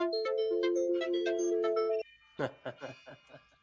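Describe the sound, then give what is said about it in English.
A timer alarm plays a bright, steady electronic melody of stacked tones for about two seconds, then cuts off abruptly as a person starts speaking. “My timer went off.”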